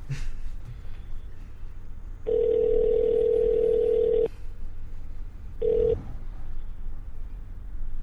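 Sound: telephone call ringing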